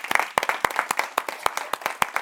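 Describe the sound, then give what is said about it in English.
An audience, asked to stand, claps in praise of a man for his revelations and visions, many hands striking in a brisk, steady rhythm with sharp, bright claps standing out over a continuous wash of applause. No one speaks. “Y'all stand up and let's just give him another clap of praise for his revelations, for his visions.”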